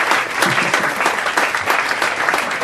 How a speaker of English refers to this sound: I mean, that is incredible. Cue applause.